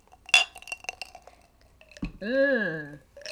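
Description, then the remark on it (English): A single sharp, bright clink of coffee mugs knocking together in a toast, followed by a few light taps and a soft thud, then a short voiced sound from someone. “So that's my cheers to that.”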